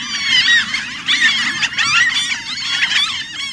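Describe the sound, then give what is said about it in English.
A noisy colony of Franklin's gulls calling over one another, a dense, continuous chorus of high, nasal, laughing cries with a low rumble of background noise beneath, no speech. “The Franklin's gull is such a bird. It breeds in freshwater wetlands over 5,000 miles from its winter home at the ocean.”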